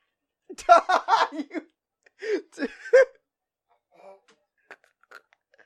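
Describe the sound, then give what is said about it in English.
An eggshell being crunched and chewed in a man's mouth, with a few brittle cracks between bursts of muffled vocal noise, then fainter scattered crunches trailing off. “Can I crunch it? Can you crunch it? Yeah. You should crunch it.”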